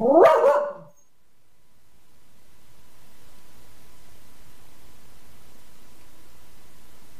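A dog lets out one loud, sharp bark at the very start, then falls silent, leaving only a faint, steady hiss for the remaining several seconds. No one speaks.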